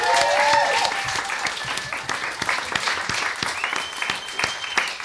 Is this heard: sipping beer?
no